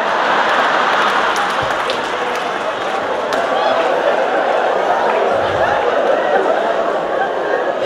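Steady, dense applause and crowd noise fill the whole stretch, loud and close, with scattered laughter and chatter mixed into the clapping.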